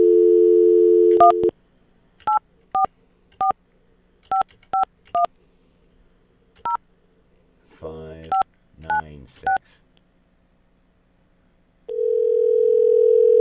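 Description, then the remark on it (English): A phone line's steady dial tone cuts off, then about ten touch-tone beeps are keyed in uneven bursts, with a short garbled burst midway, before another steady line tone begins. “So just for fun, let's see what that number is doing now. Got a phone line?”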